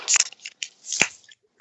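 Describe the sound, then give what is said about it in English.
Caps of ginger and lemon wine cooler bottles crack open, a quick series of crinkly, hissing twists followed by one sharp snap, with no talking over them. “Everybody go ahead and crack that and take a sip.”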